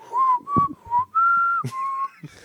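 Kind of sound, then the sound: human body sound, person whistling a tune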